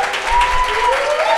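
An audience applauds loudly and steadily, many hands clapping in a dense, continuous wash with a faint tonal whistle or hum running through it.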